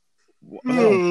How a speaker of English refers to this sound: That made that yawn for you. Don't use my yawn against this game.